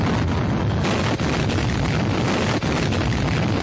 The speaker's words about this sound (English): Warships of the task force hurl salvos of shell.